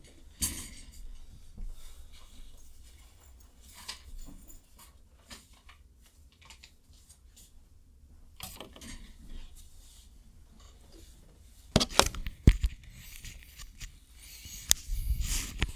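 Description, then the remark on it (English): Paper rustles and crinkles as a person grabs one more forgotten sheet, picking up and shuffling sheets, with scattered soft handling noises and a few sharper crackles toward the end; no one speaks. “Without the time, let me just grab one more paper that I forgot.”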